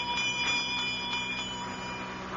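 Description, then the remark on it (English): A small bell rings continuously with a bright, sustained metallic tone and faint rhythmic pulses, heard alone at a moderate level with no voices. “I'm trying to see where that bell came from.”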